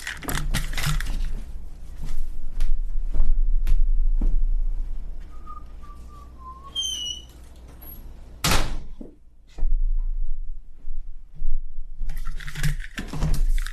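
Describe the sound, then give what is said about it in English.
A door creaks on its hinges, then swings shut with a single solid thud, surrounded by scattered clicks and rustling of movement; no one speaks. “Oh, I should probably shut my door.”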